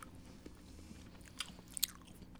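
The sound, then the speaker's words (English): Chewing and wet mouth smacks into the microphone while tasting a Jelly Belly margarita-flavoured snack from the late night taco truck mix, with irregular crisp clicks and a couple of sharper crunchy bites standing out over a low steady hum; no talking. “We're all smacking into the microphone. ASMR.”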